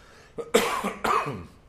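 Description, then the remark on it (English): A man coughs and clears his throat in two harsh, raspy bursts, the second slightly longer, with a short gravelly rattle at the end. “Whoa! I got a frog in my throat.”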